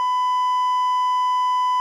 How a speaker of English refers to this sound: Give me a beep.